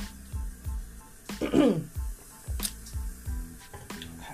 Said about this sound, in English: Time for me to sip some water.